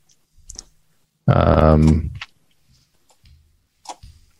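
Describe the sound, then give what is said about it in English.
Dice are rolled to decide how long some smoke lasts, clattering in a few short, sharp clicks spread across a few seconds, with a brief wordless voiced sound in the middle and a couple of faint taps near the end. “I'm going to let the dice decide.”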